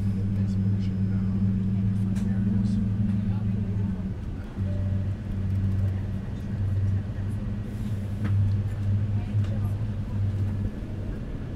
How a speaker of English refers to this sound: Now we're slowly swinging round so that the plane can proceed under its own power to our takeoff point. You can now hear the engines starting to power up.